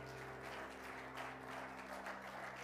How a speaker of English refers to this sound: Let's give the Lord a hand clap of praise as you're being seated.